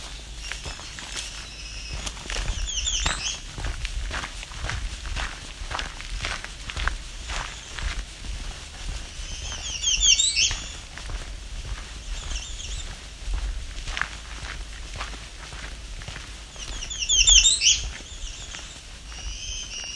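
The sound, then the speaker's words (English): Songs of an American redstart, a black-throated green warbler and a winter wren ring out in short, high bursts at intervals, over steady crunching footsteps on a forest trail. “So you can hear American redstart. And black-throated green warbler and winter wren.”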